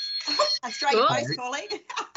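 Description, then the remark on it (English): An office phone rings with Australia Post calling, giving steady, high-pitched electronic tones that hold for about two seconds, partly buried under a person talking over it. “Australia Post calling.”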